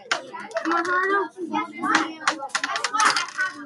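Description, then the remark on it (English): Dice clatter and tumble across a tabletop in a few quick bursts of clicks as children each roll one die in a game, hoping for a six, while their voices chatter over and around the rattling. “So I want you each to roll one dice.”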